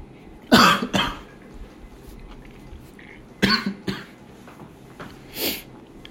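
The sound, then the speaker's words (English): Coughing fits after drinking water: a pair of loud, harsh coughs, a pause, then another double cough, followed by a softer breathy cough at the end. No talking. “Excuse me about that, I was just drinking some water,”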